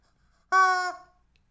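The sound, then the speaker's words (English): A single loud cluck from a chicken called Charlie Chicken, a brief harmonic squawk lasting under half a second that trails off quickly, heard alone against silence with no talking. “I I can't take this chicken with me anywhere.”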